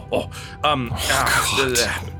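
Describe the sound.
A gravelly bout of throat clearing, a few rough rasping bursts run together over about two seconds with a strained, voiced edge.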